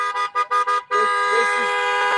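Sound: car horn honking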